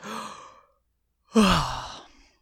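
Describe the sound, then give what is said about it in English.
A voiced yawn heard on its own: a short breathy exhale, a brief pause, then a louder drawn-out yawning groan that slides down in pitch and trails off. “I yawned.”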